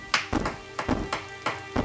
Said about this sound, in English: We go up. Wendell knocks on the door.